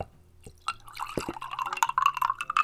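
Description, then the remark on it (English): Hot coffee pours steadily into a cup, a trickling stream whose pitch climbs as the cup fills, with a few splashy drips at the start and no voices. “I'm pouring up a nice coffee right now.”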